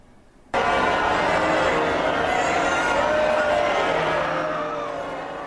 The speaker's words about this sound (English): That's the British public booing as the Prime Minister and his wife left a special Jubilee church service on Saturday this weekend.